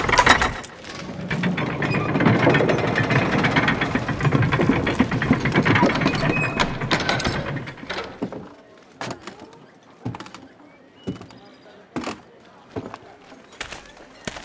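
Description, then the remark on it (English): A castle drawbridge being lowered: a loud, dense grinding of ratcheting gears for about seven seconds, then a slower run of separate clanks and thunks as the mechanism winds down. “Men, set down your bows and arrows and take down the drawbridge, so that these honored warriors can enter the castle walls.”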